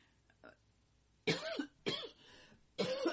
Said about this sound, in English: Excuse me. Nothing like talking about dioxins and have a good coughing fit, right?